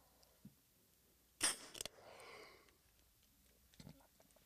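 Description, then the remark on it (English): A sharp click and burst of spray from an albuterol inhaler used against an asthma wheeze, a second quick click, then a soft breathy hiss as the puff is drawn in, with quiet small noises around it. “Let's try the albuterol inhaler and see if we can knock that out.”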